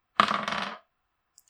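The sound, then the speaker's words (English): A short, bright clatter of dice tumbling across a hard tabletop for a constitution saving throw in a tabletop game, lasting under a second before settling, distinct with no voices over it. “So first, make a con save with disadvantage, please.”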